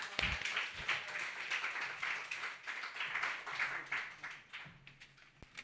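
A crowd applauds steadily, many hands clapping in a dense, even wash of sound that holds for several seconds before thinning slightly at the end, with a few sharper individual claps.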